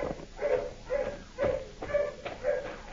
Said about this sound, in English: Dogs are getting closer, Rocky.